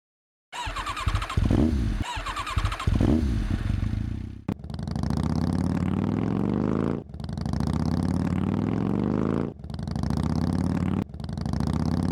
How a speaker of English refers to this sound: Six police motorcycles led the funeral procession from the auditorium doors, and 200 red-coated Mounties from across the country followed, and a solo snare drum saluted each step down 14th Street Northwest.